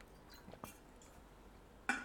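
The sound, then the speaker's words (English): Quiet sipping of water from a glass: a couple of faint, soft slurps, then a brief sharper clink or gulp near the end, with no talking. “Let me have a little sip of some Wawa. A little sippity sips.”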